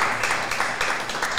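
A show audience applauds the host venue, Stillwater Company, steadily: dense overlapping claps form a bright, hissy wash that holds at an even loudness with small swells throughout the short burst, with no voices heard.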